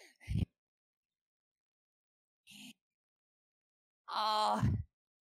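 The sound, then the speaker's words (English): A voice imitates heavy, heaving breaths after running up stairs: three loud exhales with a groaning, voiced edge, separated by long pauses, the last one drawn out and strained. “I'm breathing like really hard, like heaving like”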